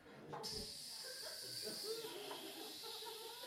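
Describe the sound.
A person vocally imitates the "snake hiss" of a fart being sneaked out silently, a long, steady hiss held for about three seconds, loud, with faint breathy vocal undertones.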